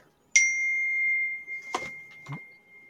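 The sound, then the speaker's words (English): A phone notification ding: one bright, high chime that strikes sharply and rings out with a long, steady decay. Two brief muffled bumps or voice sounds occur beneath the fading tone. “And your phone's not on silent.”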